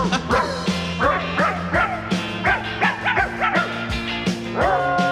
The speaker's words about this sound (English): you can get into the dogs barking crap. … was a big album for me